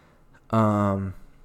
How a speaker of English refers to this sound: Excuse me, I had a little yawn there.